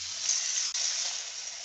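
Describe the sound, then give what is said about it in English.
A steady, hissing stream of water pours into a dog's bowl, continuous for a couple of seconds with a brief dip midway, and no voices. “You doing dishes right now? No, get my dog some water.”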